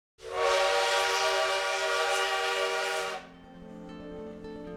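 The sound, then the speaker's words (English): A loud, sustained train whistle blares for about three seconds, rich with harmonics, then cuts off, leaving a quieter rumble of a moving train with faint tonal hum. “In the fall of 1930, newlyweds Diego Rivera and Frida Kahlo set out on a long train ride, leaving their beloved Casa Azul in Mexico City to come to the United States.”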